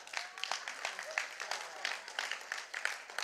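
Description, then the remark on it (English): A crowd applauds and cheers steadily, the dense clapping mixed with shouting voices, fairly loud and sustained throughout. “This must be the Essex crowd, eh?”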